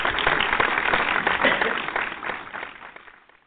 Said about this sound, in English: So round of applause if you kept your hair looking fly for Thanksgiving.